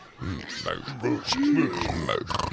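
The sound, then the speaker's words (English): A person playing a pig character, Priscilla, Queen of the Moosh, voices a string of throaty, snorting pig grunts and oinks for a couple of seconds, loud, with rough nasal bursts and a few squealing rises. “You can totally play the pig.”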